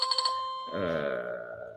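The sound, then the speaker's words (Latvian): A phone ringtone plays for an incoming call from a client, a bright electronic melody of rapid pulsing beeps over a steady tone, then shifts to a fuller, buzzier sustained passage that slowly fades. “O, un man ienāk zvans iekšā.”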